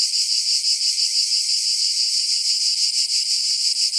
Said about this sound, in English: The noise is made by the male cicada. He uses it to attract a female.